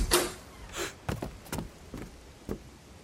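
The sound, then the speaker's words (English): A home's front door opens in the rain with a creak and a couple of dull knocks and clicks from the latch and frame, followed by a faint whoosh, with no voices. “Begrudgingly, he geared up for the rain and opened his front door.”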